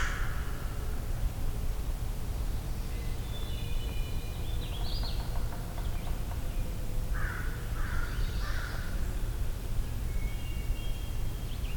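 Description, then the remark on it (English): An American crow caws three times in quick succession against a steady outdoor hiss, with thin, high songbird phrases of a magnolia warbler scattered throughout. “American crow and a magnolia warbler.”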